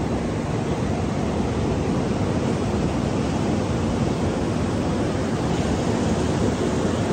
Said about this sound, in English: And as I'm finishing up this, the ocean is ever present.